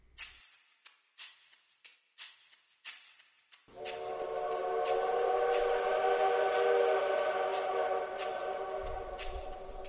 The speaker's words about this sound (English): A whistle hoots in the distance, loud and high-pitched. The grin cracks across my face. Right on schedule.